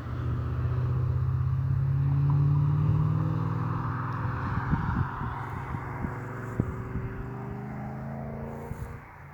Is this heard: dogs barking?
no